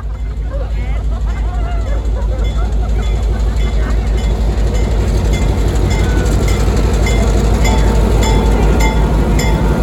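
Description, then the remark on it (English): The longest train run in Niles Canyon rumbles steadily along its rails on a cold night, a loud continuous roar with faint rhythmic clatter, while a murmur of crowd chatter blends into the background. “So this is the longest train that they run in Niles Canyon at any time.”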